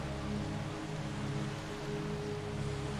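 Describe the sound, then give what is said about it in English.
Ocean waves wash against the shore in a steady, unbroken roar of hissing water, with no separate crashes standing out and a faint low hum beneath. No one speaks. “Listen to the sound of the waves as they crash against the shore.”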